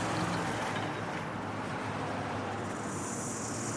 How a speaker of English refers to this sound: Then there is the drone of aeroplanes passing overhead.